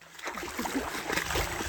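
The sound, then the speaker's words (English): Footsteps splash through swamp water, a run of wet sloshes and splatters over about two seconds, steady and moderately loud with no voices. “Swamp water.”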